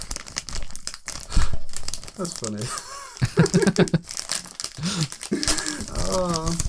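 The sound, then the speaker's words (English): Wrapping paper crinkles and tears in loud bursts as a gift is opened, rustling continuously for several seconds while people talk and laugh over it. “Oh, that's paper, by the way.”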